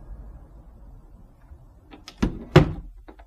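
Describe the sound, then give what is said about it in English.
The door of a house on the Rue Hors Château in Liège is pushed open, with a few clicks and then two solid knocking thunks as it swings and meets its frame, heard alone against quiet. “push, it's open.”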